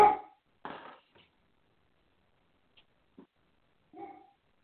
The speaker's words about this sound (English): My dog is barking, sorry.